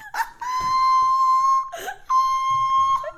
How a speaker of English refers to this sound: There's the whistle tones.